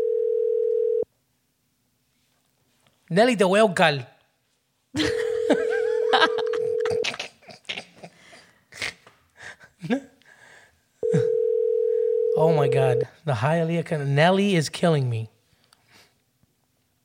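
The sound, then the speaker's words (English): A steady telephone dial tone during a live phone call hums in three separate stretches, each a second or two long, broken up by laughing voices and excited talk in between. “This is what happens when you try to do live phone calls.”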